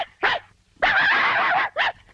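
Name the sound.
dog howling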